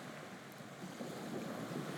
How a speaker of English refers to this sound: The weather is cool, but not too cold. And there is a steady headwind on the bow of the boat as it skims across the sea.